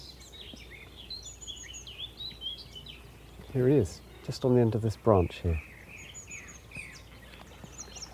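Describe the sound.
A male willow warbler sings sweet, descending, cascading warbling phrases, repeating throughout, while a man speaks quietly partway through.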